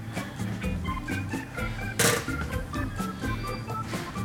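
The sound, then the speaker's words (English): A single ice cube drops into a cocktail glass holding frothed Campari with one sharp clink midway through, set against steady background music. “Add another ice cube.”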